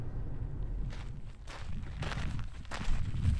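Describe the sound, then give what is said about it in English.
Footsteps crunch along outdoors at a steady walking pace, about five or six gritty steps over a constant low rumbling background, with no voices. The walkers are heading towards a steam vent in Hawaii Volcanoes National Park. “We're walking towards one of these steam vents.”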